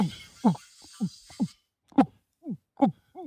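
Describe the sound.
A person imitates a cat retching with a rapid series of short, throaty, gulping hacks, each dropping in pitch, repeating in an uneven rhythm before falling briefly quiet, then resuming.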